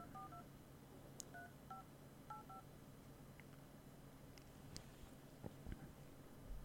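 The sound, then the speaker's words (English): A quick run of roughly eight short telephone keypad dialing tones, each a clear dual-pitched beep, pressed in an uneven rhythm over a steady low background hum, followed by faint clicks, as a caller phones a representative in Portland, Oregon. “Now, I'm also going to call my representative in Oregon, in Portland.”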